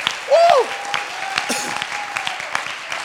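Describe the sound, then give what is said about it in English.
A crowd of people clapping their hands unto the Lord in a scattered, steady patter, with a voice briefly calling out over the applause. “Could you clap your hands unto the Lord?”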